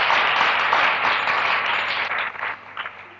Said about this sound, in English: I think that they have pulled off a good program. They deserve an applause.